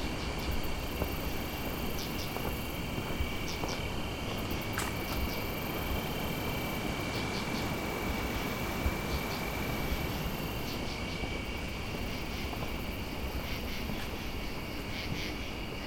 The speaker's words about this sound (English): It's got quite a lively soundscape here amongst the crickets, grasshoppers, these other loud insects that I think are probably some kind of katydid. Occasional chorus frog.